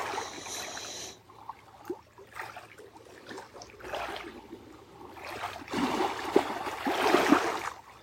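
lake waves lapping

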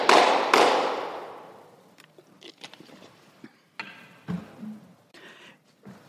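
hand clap

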